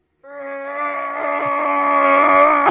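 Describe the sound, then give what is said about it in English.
A single voice lets out a long, sustained yell that swells steadily louder for a couple of seconds before cutting off, imitating enemies screaming as they charge in. “You'll just hear them Serious Sam style.”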